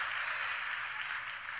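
Steady applause from an audience, a dense, even wash of many hands clapping at once with no voices, holding at a constant moderate level throughout.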